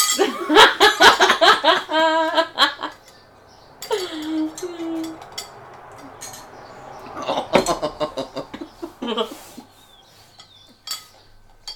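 glasses clinking

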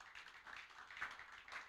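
audience clapping

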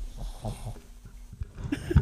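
snoring

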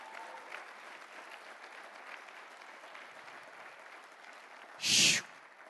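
audience clapping hands

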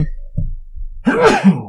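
sneeze

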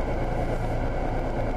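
car engine running

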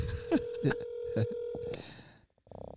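outgoing phone call ringing

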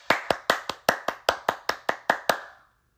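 round of applause

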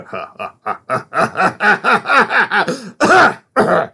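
throat clearing and coughing

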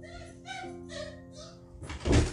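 door opening

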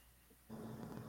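dog howling

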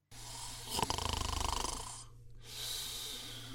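person snoring

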